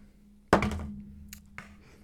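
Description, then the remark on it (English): Dice rolled on a table for an insight check hit with a sharp, loud clatter that rattles and fades, followed by a couple of lighter clicks as they settle on an 8. No one speaks. “I rolled an 8 on the dice.”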